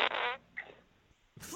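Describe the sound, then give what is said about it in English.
A voice blows a raspy, buzzing fart imitation, a short blat followed by a sputtering tail, then another quick blurt after a brief pause, loud. “I did fart, and it was nasty, by the way.”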